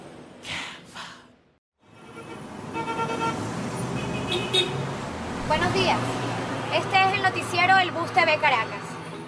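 Busy street noise in Caracas, Venezuela, heard from inside a bus: a steady engine rumble and traffic din, with horn toots and indistinct chatter from people, after a brief breathy sound and a moment of silence.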